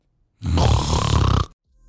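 A single loud, rattling snore lasting about a second, with a raspy rough texture, then silence. No one talks.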